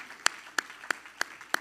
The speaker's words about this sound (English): If God has washed your sins away, you owe Him your worship, your gratitude, and your praise. Clap your hands again.